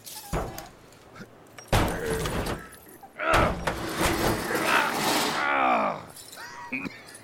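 A tire iron pries at a door: sharp metallic clanks and scrapes, then a long creaking groan as the hinge gives way, with strained grunts, all loud.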